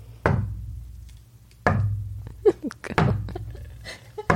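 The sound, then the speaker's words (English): Four soft, hollow knocks made by knocking a coaster as a Foley sound effect imitating a knock on a bedroom door. They are slow and evenly spaced about a second and a half apart, with faint small clicks between them. “She picked up a coaster and knocked it when she's got a huge wood table.”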